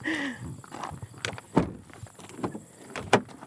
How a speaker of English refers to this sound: Okay, I'm going to turn the recorder off now while we get into the car.